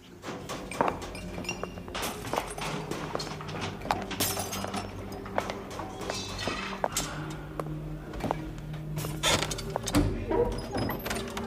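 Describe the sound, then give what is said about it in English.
Repeated crashes, cracks and shattering impacts of sculptures and artworks being smashed in the Sultan's great garden, some sharp, others duller, scattered irregularly over a steady low rumble with a faint voice underneath. “They've been destroying the Sultan's great garden, his artworks. I just passed the sculpture gallery, all smashed.”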